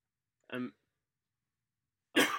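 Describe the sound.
A short, voiced cough rings out, followed after a brief silence by a second harsher, rougher burst that cuts off abruptly at the end.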